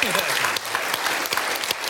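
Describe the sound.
A round of applause from many hands, a dense, steady wash of clapping that stays loud for the full two seconds, with a faint trace of voices mixed in at the start.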